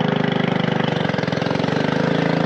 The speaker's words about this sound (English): We used to go by dugout canoe and paddle, but now we have a little motor that fits this river with these boats.